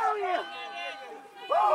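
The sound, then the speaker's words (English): A man lets out a loud, emphatic yell as he crosses the finish line of a run on a high school track on a cold May morning, during a police physical test in Yonkers; a strained voiced cry that rises, holds, then breaks into a second burst, with faint crowd cheering. “He lets out an emphatic yell as he crosses the finish line.”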